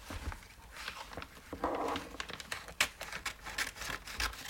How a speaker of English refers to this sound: I'm tearing the paper.